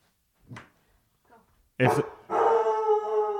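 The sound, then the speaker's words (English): A dog barks, two soft yips followed by a loud sharp bark, then breaks into a sustained, strained howl that carries to the end. “What is he barking at?”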